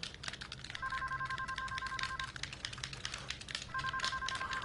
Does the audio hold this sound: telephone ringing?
yes